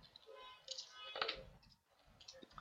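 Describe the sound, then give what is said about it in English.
Dice clatter and click against each other as they are sorted, in a quiet, irregular patter of light taps, with a brief busier burst in the middle. “I have fucking all my dice, all mixed together.”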